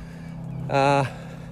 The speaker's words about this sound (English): We have some evenly distributed misdirected seagulls today.